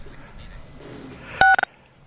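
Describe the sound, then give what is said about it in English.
Phone keypad touch-tones as star six is pressed on a phone to unmute: one sustained dual-tone beep followed quickly by two short beeps, loud, after a stretch of quiet line hiss. “Please hit *6 on your phone, please, so you can unmute yourself.”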